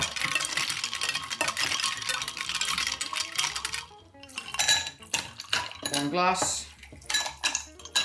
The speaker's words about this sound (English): And then you put loads of ice in. Stir it. Until it goes cold on the side of the vase or vase jug.